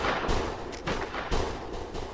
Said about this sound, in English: So there's a gunshot. There's a gunshot. The second that gunshot goes off, I'm friction sliding down the rope. Okay. Off the roof. So you're headed there. Headed in. People begin to scream and start to run, and there are more gunshots.